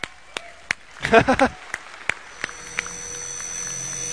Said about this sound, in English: Why are you clapping?